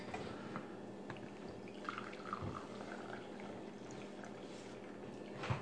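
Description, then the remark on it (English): Coffee is poured steadily into a cup as a refill, a continuous trickling splash with faint gurgles and a brief clink near the end, with no talking. “Love the sound of coffee being poured.”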